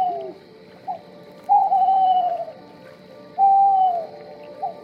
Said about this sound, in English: So my uncle is looking and looking and looking, trying to find this owl. As my husband came up next to him, there was a log on the shore, and there were four owls on the log, with the one owl incessantly hooting at them.